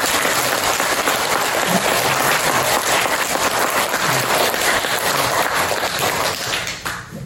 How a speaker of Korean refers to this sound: 우리 큰 박수를 한번 좀 하세요.